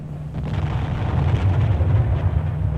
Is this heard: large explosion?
yes